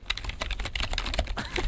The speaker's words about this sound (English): Or tap dancing. We're not sure. Yeah, that sounds like aggressively typing.